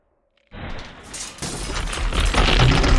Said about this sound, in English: That wrecking ball just went right through the wall beside him. Didn't knock over his can of beans, though.